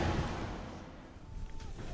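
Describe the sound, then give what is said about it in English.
Inside a crowded bus as passengers board, standing room only: a steady low engine rumble fills the space, with soft thumps, shuffling movement and faint, indistinct murmurs in the background. “We're on the bus, finally.”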